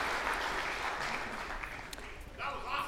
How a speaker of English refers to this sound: You guys, give it up. Give the Lord a big round of applause this morning.